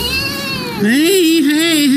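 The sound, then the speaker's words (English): The kitten Matilda cries loudly as she is taken out of a pipe and given CPR: a softer mewling opens, then a long, strained wail that wavers up and down in pitch, with no one talking. “Here's the moment the kitten was taken out of the pipe and given CPR.”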